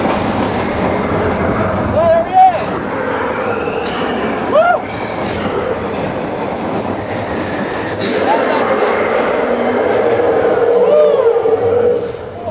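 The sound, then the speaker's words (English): The Expedition Everest – Legend of the Forbidden Mountain roller coaster at Disney's Animal Kingdom in motion: a steady, loud rumbling roar of cars on track, with several rising, pitched squeals or cries breaking through at intervals and the noise building toward the end. “Her very first experience on Expedition Everest, Legend of the Forbidden Mountain, over at Disney's Animal Kingdom.”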